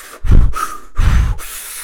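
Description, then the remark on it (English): Two loud, forced breaths, each a deep noisy inhale pulled sharply through the nose and mouth, separated by a brief pause, with no talking. “Feels weird to breathe in.”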